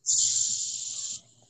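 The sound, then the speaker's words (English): A loud, steady high-pitched buzz of cicadas drones continuously for about a second, then abruptly drops to a fainter, thinner hum, with a low murmur underneath. “Probably the bugs and crickets and shit in the background. Those are cicadas.”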